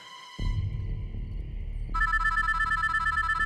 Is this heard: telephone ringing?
yes